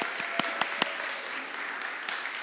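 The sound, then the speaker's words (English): A church audience at City Church applauds two women stepping down from their volunteer posts with steady, dense clapping, and a few sharper individual claps stand out in the first second. The applause holds at a fairly even level throughout. “And we believe here at City Church, just like here, why don't you go ahead and give them a round of applause?”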